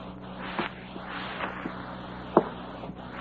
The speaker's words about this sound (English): A short, heavy-set man furtively approaches a home in which all the lights are out. He goes up the front steps quietly.